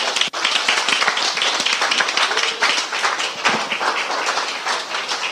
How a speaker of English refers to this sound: Somebody say, thank God. And amen. Somebody give God a hand clap.